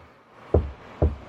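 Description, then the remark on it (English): Two dull, low thumps about half a second apart, tapped out by hand as a sound effect to mimic footsteps walking up to a car, fairly loud against a quiet background with no talking. “Of course, you hear my footsteps walking up to the car, getting further and further as far as my hands can get away from my body to make the sound effect.”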